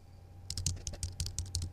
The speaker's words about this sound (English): I should just do like an Asmr podcast, just doing that the whole time. Just be like, and on today's episode, keyboard clicking.